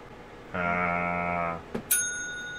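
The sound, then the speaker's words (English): A steady electronic buzzing tone holds for about a second, then a short click and a bright digital bell ding that rings out and fades, heard clearly with no talking. “I'll give you a digital bell.”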